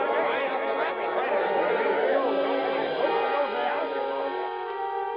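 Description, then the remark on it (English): An agitated crowd chattering in a back room, jammed tightly into the room and its window to stop someone escaping: many excited voices overlap in a loud, unbroken babble for the whole stretch, with no single speaker standing out. “For they jammed so tightly into that back room, into the window itself, that it was a long, precious second before the slow, clumsy”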